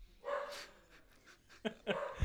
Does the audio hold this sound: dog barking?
yes